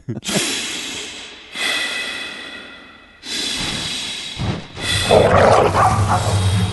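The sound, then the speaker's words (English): Dogs bark and bay loudly in long, overlapping bursts that come every second or so as they pursue people running through the woods in a film scene with Kevin James, with rustling commotion building toward the end and no one talking. “Being pursued by dogs.”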